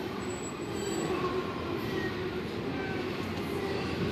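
A train rolls along the rails with a steady, heavy low rumble that holds an even loudness throughout, a few faint high whines riding on top and no voices.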